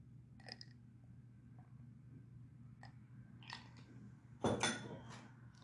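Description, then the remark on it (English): Someone sips water: a few small wet mouth clicks, then a louder gulping swallow near the end, all over a steady low hum with no talking. “I'm taking a sip of this H2O, guys.”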